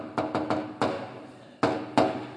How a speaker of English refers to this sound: You know, it's annoying when people don't knock on my door properly. I don't know if we can connect on this, but this is how, if you ever come to my house, this is how I prefer you knock.